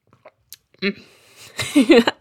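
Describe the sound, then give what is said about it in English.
A close-miked sip of hot, spiced black tea from a cup: a short slurp, then wet swallowing and mouth sounds, followed by a brief murmur. “I take a sip.”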